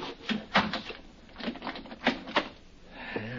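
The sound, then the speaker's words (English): An apartment door swings shut late at night, followed by a string of sharp mechanical clicks and rattles as the lock is worked, then a brief low scrape at the end. “You better close that door and lock it, Mr.”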